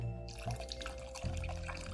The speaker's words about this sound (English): Right now, my water is barely covering the potatoes. So I like to have about an inch of liquid above that. So I'm just gonna get some cold water and add it to the top.